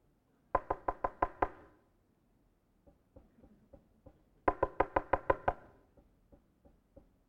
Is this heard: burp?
no